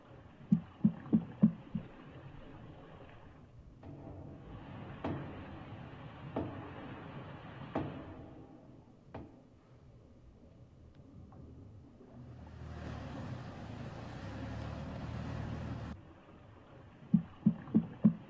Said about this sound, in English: But here is, and I'm just the messenger here, right? Yeah. Here is the knocking. Don't shoot me either. Here is the knocking.